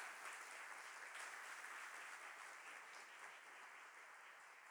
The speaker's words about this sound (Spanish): Amén. Puedes dar un aplauso al Señor.